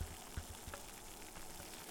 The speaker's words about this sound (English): The water here is just starting to boil.